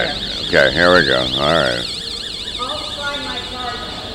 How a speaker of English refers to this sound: Uh-oh. That's the alarm going off when the door is open.